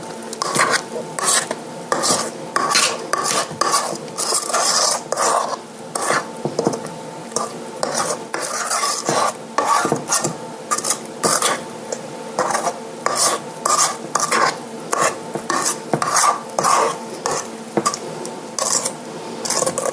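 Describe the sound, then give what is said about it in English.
Thick, non-pourable batter is stirred in a bowl, brought from the sides to the center, with repeated scraping and squelching strokes in a steady, uneven rhythm, the spoon rasping against the sides. No one speaks. “So I'm bringing back down from the sides to the center. This is not a pourable batter. It's thick.”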